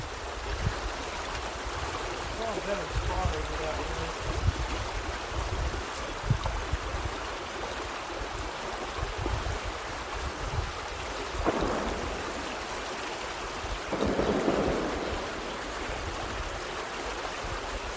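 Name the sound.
creek water flowing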